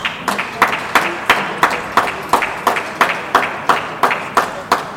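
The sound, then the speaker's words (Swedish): A single person, some kind of coach at a competition, claps loudly and steadily, sharp hand claps repeating about three times per second, prominent with a faint murmur behind. “Någon som klappar så in i helvete högt här.”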